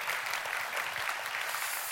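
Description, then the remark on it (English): A crowd applauds steadily, a dense, continuous patter of many hands clapping at an even, fairly loud level for the whole stretch, with no voices standing out. “That was a strong round of applause, and I appreciate that.”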